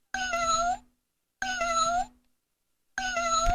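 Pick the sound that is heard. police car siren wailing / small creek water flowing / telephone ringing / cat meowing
cat meowing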